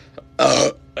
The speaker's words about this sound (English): That was bad. That was really bad. I just burped in that.